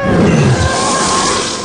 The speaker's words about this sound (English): As the sound of the spacecraft resonates throughout the glass canyon of the plaza